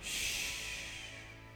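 A small dog named Duncan snores once, a soft, airy, hissing breath that swells briefly and then slowly fades. It is quiet, with no talking.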